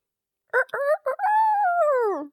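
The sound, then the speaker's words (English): A person's voice imitates a rooster crowing: three quick clipped notes, then one long drawn-out wail that slides downward. It's loud and performed alone with no other talking. “So 1981 is the year of the rooster.”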